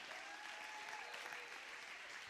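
An audience claps in praise of the Lord, a dense, steady wash of applause, many hands striking at once with no clear individual beats, sustained and fairly loud throughout.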